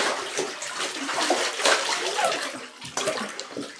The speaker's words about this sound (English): Okay, now I'm gonna dunk my head under the water.